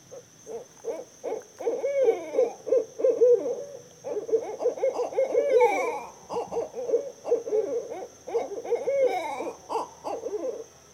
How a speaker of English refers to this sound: it's like an owl that's on a limb that's aggravated because it doesn't have any company. Right. Let's listen to that just for a second,